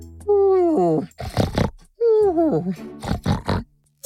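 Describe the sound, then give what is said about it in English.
A voice imitates Mr. Pig snoring as he naps while bathing in a small pond under the shade of a tree: two cycles, each a drawn-out, wavering groan followed by a burst of rough, snuffling snorts, fairly loud with no other sounds. “Mr. Pig was snoring, having a good nap.”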